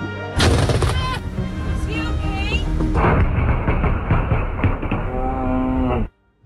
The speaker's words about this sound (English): Right in front of their house in Florida. You can hear the lightning followed by a shout.